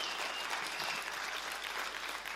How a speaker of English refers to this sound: 5 years of being us, Common Ground, once Table View, now Bloberg. Why don't we just give another round of applause to say, wow, this is awesome.